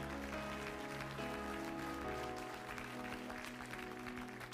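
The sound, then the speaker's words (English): An audience stands and claps steadily for several seconds as a clap offering to the Lord. It is a dense, even crackle of many hands, with sustained low musical tones humming underneath the whole time. “Would you stand with me and give the Lord a clap offering one time and say, I believe God can bless America.”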